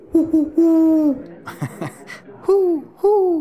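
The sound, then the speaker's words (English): A person imitates an owl with low, steady vocal hoots: a quick pair, then a long drawn-out call, a brief breathy burst like a laugh, and two more hoots to finish. “What sound does eine Eule make?”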